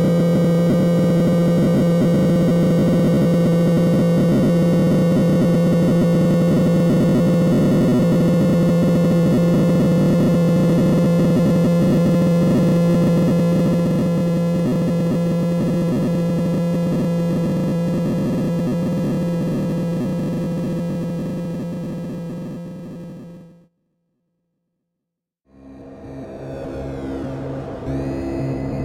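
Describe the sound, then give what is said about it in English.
Synthesized dial-up modem sounds: a dense, buzzing wash of steady electronic tones and hiss that runs loudly for over twenty seconds, cuts out briefly, then returns with chirping, sweeping tones. “Creating some dial-up modem sounds.”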